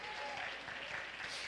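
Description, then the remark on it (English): An audience claps their hands in a dense, steady burst of applause, loud and sustained with no clear rhythm, many hands blending into a continuous wash of sound. “Come on, clap your hands and thank God for His word.”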